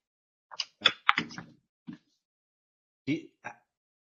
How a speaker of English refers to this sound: That's not a normal door.